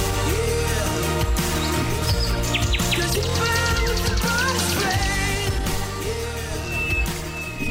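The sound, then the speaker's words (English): A dense chorus of many birds chirping and calling at once outdoors in spring, loud and continuous, with rapid overlapping tweets and trills and no one talking. “It's a lot of birds out there.”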